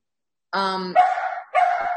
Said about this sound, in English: Sorry, the dog really wants me to play. She's like, so we'll play after.